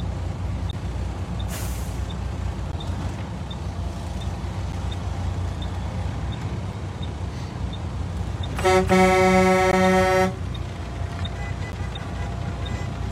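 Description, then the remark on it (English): A loud, sustained vehicle horn blares for about two seconds over a steady rumble of idling traffic and engine noise from a convoy of a couple of hundred cars stretching through town. “There's got to be a couple of hundred cars here.”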